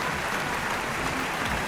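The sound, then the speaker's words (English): An audience in Sin City claps steadily, a dense, even wash of many hands with no clear individual beats, holding at a constant level for the whole two seconds with no voices over it. “What are we clapping for here?”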